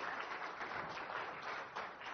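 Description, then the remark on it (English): Steady applause from an audience as the mic is handed over to HubSpot CEO J.D. Sherman, a dense wash of many hands clapping at an even level for about two seconds, with no voices over it. “Hold your applause, please.”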